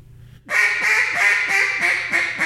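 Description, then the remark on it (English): A duck call blown loud, imitating a fine hen with a steady run of about six raspy hen-style quacks in quick, even rhythm after a brief quiet start. “Do a fine hen.”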